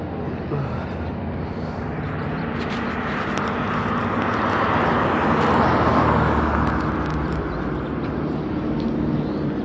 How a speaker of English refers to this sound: there's this like cars passing by, and I don't like walking in front of them, so I let them go by first.